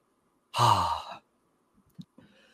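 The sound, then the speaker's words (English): A single loud cough from a person with allergies bursts out abruptly, breathy and rough, lasting under a second, followed by quiet and a few faint soft noises. “I was holding in that cough forever.”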